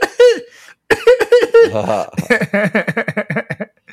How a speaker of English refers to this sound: Let's see, I didn't cough because I'm awesome. And I cough a lot. I cough more now since I had COVID.